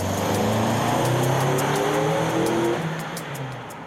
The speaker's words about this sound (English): Michael Sussman gave us this video of a test conducted by Westchester County Police. In it, DJ's car is shown accelerating to where Aaron Hess was standing.